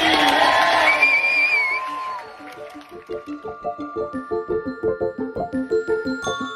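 A loud crowd erupts in cheering and whoops as a speaker from the Wake Water Co. team inside Enagic is introduced, then settles into steady rhythmic clapping that continues to the end.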